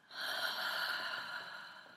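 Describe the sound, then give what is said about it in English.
A single slow, airy breath, in through the nose and out through the mouth during a meditation after waking, drawn steadily for about two seconds, soft, with a hissing, nasal quality and no talking. “Notice your breath as it comes in your nose and then out of your mouth.”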